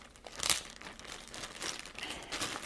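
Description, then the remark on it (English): Wrapping paper on a little present being torn open by hand without scissors and crumpled up, a burst of loud crinkling followed by continuous rustling and ripping, with no voices. “Well, I've got a little present for you. Do I need scissors? I can just tear it open.”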